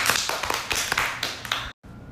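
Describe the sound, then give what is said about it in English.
A small group applauds steadily to welcome two guests, a dense patter of crisp claps that briefly cuts out near the end before the clapping resumes. “Please give a warm round of applause”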